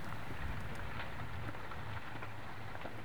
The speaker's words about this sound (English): Anyway, here I am on Mount Pacaya. It is an active volcano, and what you're listening to is chunks of smoking hot rock rolling down the mountain. Yeah, they're like little smoking meteors tumbling down. It really does sound like a creek bed.